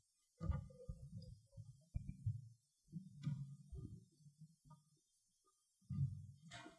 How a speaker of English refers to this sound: All right. I think the noise went away. How's that sound out there? Did that humming go away?